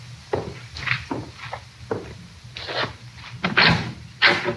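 A door being opened up close, with a series of wooden clunks, scrapes and rattles spread over a few seconds, the last couple louder and sharper, and no one speaking.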